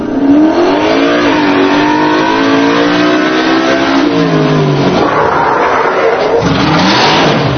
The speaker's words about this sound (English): Couple of revs of the engine.